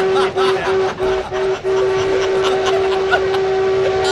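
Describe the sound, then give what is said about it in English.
A steam locomotive whistle, heard by people riding the train, blows deafeningly loud and steady for the whole stretch, one long sustained tone over rumbling train noise, with a few bursts of chuffing early on. “Yes, we heard the horn.”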